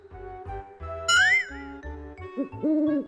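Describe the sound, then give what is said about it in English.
An owl hoots a few times, soft rounded calls near the end, set against bright chiming musical tones and a brief rising whistle-like sweep, with no talking. “Owl.”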